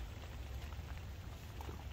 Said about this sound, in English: It's been chucking it down pretty much all morning. Since I had that fish, it's about 10 o'clock I think it started. We've got about 2 hours, maybe 3 hours of rain.